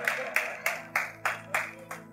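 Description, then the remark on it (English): Applause in a steady rhythm, about seven sharp, bright claps evenly spaced roughly a third of a second apart, with a low hum underneath and no talking. “So that when it was time, go ahead, mom, give yourself an applause.”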